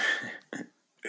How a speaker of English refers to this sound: Ooh, COVID cough. That was literally a COVID cough, you guys.